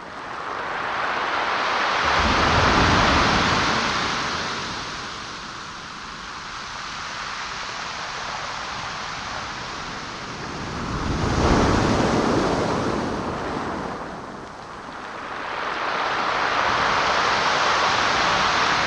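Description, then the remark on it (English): Pacific Ocean waves surge in and wash back over gravel and pebbles, a broad hissing roar that swells in slow, rolling pulses with a faint gritty rattle, with no voices. “The Pacific Ocean. Delivering gravel and pebbles. The waves, like sandpaper, further reshaping the land.”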